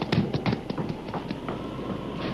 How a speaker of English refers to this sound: Then she ran up the steps.